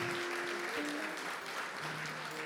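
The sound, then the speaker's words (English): Sustained audience applause for a speaker at Lifeway, a dense wash of many hands clapping steadily at a fairly loud level, with faint tonal hums running underneath. “Give him a hand clap one more time.”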